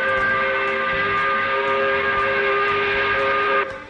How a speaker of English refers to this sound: We like recognizing this very time of the week. Putting the spotlight on it. Smell the roses, as it were. We do this by blowing the 5 o'clock whistle.